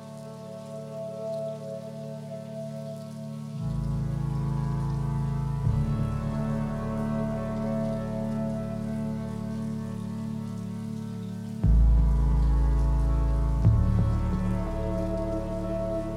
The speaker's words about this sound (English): a mood-setting mixture of ethereal synthesizers and the sound of falling rain